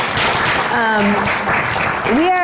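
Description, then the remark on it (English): Steady clapping from a group fills the whole stretch, a dense, loud patter of many hands, with a couple of voices calling out over it. “Nobody wants to clap, but I do.”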